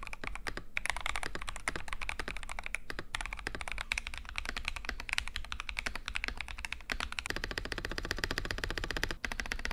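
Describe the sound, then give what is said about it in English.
Rapid, continuous clacking of keys on a mostly stock, spray-painted red Razer mechanical keyboard, fairly loud, with dense irregular keystrokes filling nearly ten seconds and a brief pause near the end; no voices. “Both keyboard sounds pretty much the same, but that's probably because mine is pretty much stock.”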